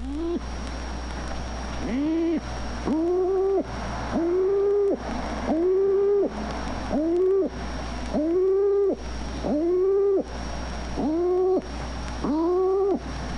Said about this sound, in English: The hen feral pigeon has a gruff coo, a little like that of the stock dove